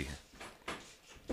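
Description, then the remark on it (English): Faint, irregular scratching by a cat at a door, a few short raspy scrapes spaced apart, with no one speaking. “My abusive cat. Sounds like Jocelyn scratching at the door.”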